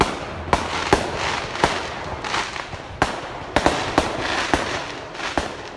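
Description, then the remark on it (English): Fireworks crackle and pop around 11 at night in a rapid, irregular series of sharp bangs over a continuous noisy hiss, moderately loud, with no voices. “I spun around and ran towards the source of the fireworks, hoping to catch the hooligans in the act.”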